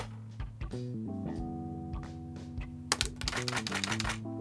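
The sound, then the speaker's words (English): Keys clack at an irregular pace on a Brother AX26 computerized word processing electronic typewriter against a steady electronic hum, followed near the end by a denser, louder burst of rapid mechanical printing noise. No one speaks. “And I just typed on the open bar. That's not good. But it's this brother computerized typewriter.”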